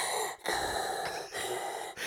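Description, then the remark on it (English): Loud, heavy breaths, drawn in and pushed out in a slow, exaggerated rhythm, with three short pauses between long breathy gusts and no talking. “Why are you breathing weird, man?”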